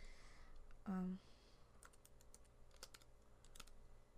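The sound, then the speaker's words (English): Quiet, irregular clacking of keys on a computer keyboard as someone types in a plural noun, a run of separate taps spread over a couple of seconds, preceded by a brief hummed vocal sound. “Maybe you should say it out loud as you're typing it.”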